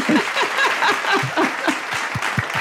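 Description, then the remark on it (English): An applause sound effect drop is cued: a crowd bursts into steady applause, a dense wash of many hands clapping at an even loudness for a few seconds, with no one speaking over it. “Cue the applause.”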